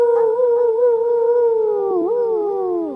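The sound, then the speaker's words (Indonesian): A person imitates the howling of many dogs, a long, wavering wolf-like tone that bends and quivers before trailing off, loud with no other sounds. “Aku dengar ni anjing lah duk. Macam howling atau macam serigala macam gini lah eh. Bunyi dia.”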